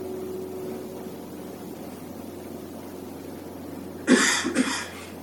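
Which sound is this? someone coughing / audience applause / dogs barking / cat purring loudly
someone coughing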